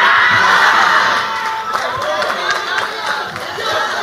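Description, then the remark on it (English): A large audience shouts and cheers together in response to a preacher's call to yell "it's my time", a loud, sustained roar of many voices, swelling at first and then continuing as a busy, overlapping din of yelling. “and if you know that God is about to back up everything so that the goodness of God can come forth in your life, yell, it's my time.”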